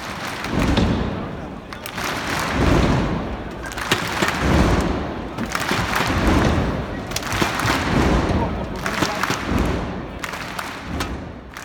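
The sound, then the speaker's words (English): A crowd of about 15,000 people bangs inflatable thundersticks together in unison, making loud, hollow whacks in rhythmic surges over a constant roar of cheering voices. “So they imagine 15,000 people, and they've got these sort of inflatable tubes that sort of make a quite satisfying clapping sound when hit together.”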